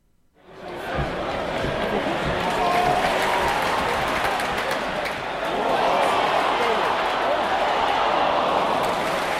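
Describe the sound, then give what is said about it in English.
A large crowd of football supporters roars and murmurs continuously, a dense wash of many voices that swells after a quick fade-in and stays loud throughout, with a further surge near the end. “Football supporters, lots of them. Or a crowd.”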